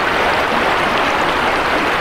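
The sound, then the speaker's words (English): Steady rushing water of the McKenzie River north of Eugene, a broad continuous wash of flowing current that stays loud and even throughout, with no voices or other sounds on top. “This sound is from the river north of the city.”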